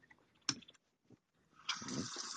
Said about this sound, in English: You said water down and somebody's actually pouring water in the background. That's amazing.